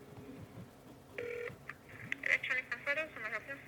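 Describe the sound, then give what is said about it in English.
Touch-tone beeps from a phone being dialed to call an electronics store, a held tone followed by a quick run of short electronic key tones, with faint voices talking in the background. “Okay, I will just grab my phone here. Give him a shout.”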